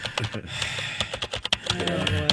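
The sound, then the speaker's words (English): Rapid, uneven clicking of keys being typed on a computer keyboard, fairly quiet, with a faint steady hum in the background and no one speaking. “Breathing and typing.”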